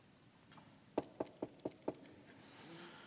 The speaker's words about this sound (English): Now, I've told my children at least 55,000 times, don't knock on the door when I'm napping. And the explanation is still the same. I knocked just once.